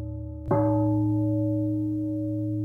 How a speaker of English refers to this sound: So let's do it. This is it. Wait for the gong.